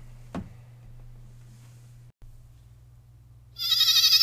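A loud goat bleat with a wavering, quavering tone bursts in near the end, following a single sharp click and a steady low hum.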